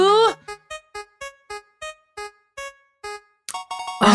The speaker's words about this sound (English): Let's spin a wheel. Do it. Most likely to...